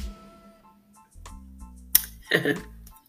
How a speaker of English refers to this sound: I probably should have had a hot cup of coffee or a hot cup of tea instead of this cold glass of sweet tea, which is really good this morning, by the way. One moment, let me take a sip of my tea.